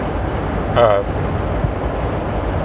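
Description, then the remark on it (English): A sheriff's car whooshes past in a quick swell lasting under a second, its tone dipping slightly as it goes, over a steady rumble of wind and road noise. “Ooh, sheriff's car just blew past me.”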